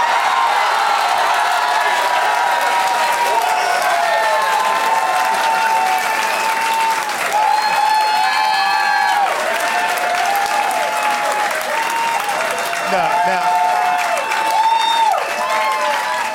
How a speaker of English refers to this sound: I think these are false claps, man. I smell something fishy here.